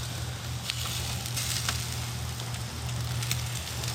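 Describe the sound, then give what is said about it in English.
Meat sizzles over a charcoal campfire as it is repeatedly flipped, natural fat coming out: a steady bed of hiss and fizz with scattered sharp crackles and pops, plus a low constant hum underneath, no voices. “I keep flipping it so I don't burn.”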